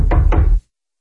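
Two loud, heavy knocks on a door in quick succession, booming, followed by silence.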